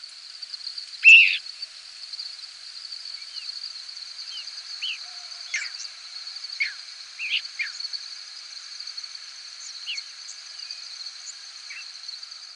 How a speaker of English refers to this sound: This clip is from a 6-hour recording of squeaks, whistles, and peeps from thousands of birds passing over a hayfield in central New York State. You'll hear a few crickets, too.